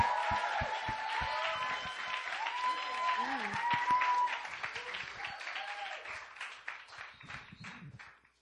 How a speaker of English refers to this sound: All right, so let's just give a warm applause, a warm amazed welcome